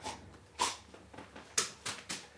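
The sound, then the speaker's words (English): A dog snores and snorts, with a handful of short, breathy bursts at irregular intervals, the louder ones toward the end, over quiet background and no talking. “Dog snoring at me, motherfucker.”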